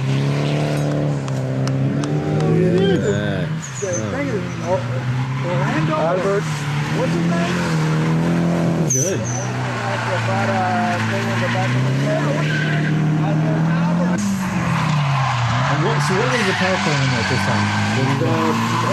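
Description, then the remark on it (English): A turbocharged S13 car with a stock SR20 four-cylinder engine, T25 turbo, exhaust, intercooler and blow-off valve drives hard, its engine rising and falling through revs for nearly twenty seconds, with bursts of tire squeal and a steady, loud roar throughout. “S13 SR20 motor. At this stage, because when the car was red is when I went the GT28. But at that stage, it was stock SR. T25 turbo, obviously exhaust, intercooler, blow-off valve, just very reliable tune off of SAFC, Z32 MAF, that's it.”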